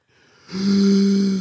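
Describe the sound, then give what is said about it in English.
A single deep, loud inhale during a breathing exercise, breathing in for a count of four, starting quietly and swelling into a raspy, slightly snore-like draw of breath that holds steady for about a second, alone. “In for four.”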